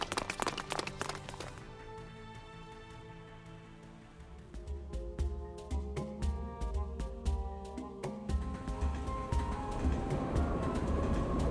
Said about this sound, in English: Soldier, call up to monorail control and tell them to stop that train.